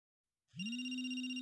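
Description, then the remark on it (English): A phone ringtone begins after a brief silence while its owner is at a church, a steady, bright electronic tone that swells in quickly and holds at an even level, sounding alone with no voices. “While I was still at the church, I heard my phone ring.”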